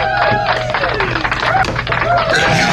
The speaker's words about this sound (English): I get to play the applause, man.